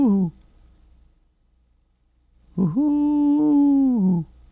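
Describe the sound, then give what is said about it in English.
A person imitates a hooting bird call with their voice: a short hoo fading out, a pause, then a longer, steady hoo held for over a second, clear. The imitated bird nests in a tree outside a window and starts calling at about 6 in the morning. “There's the hoo-hoo bird who starts at about 6 in the morning. Hoo-hoo. Hoo-hoo.”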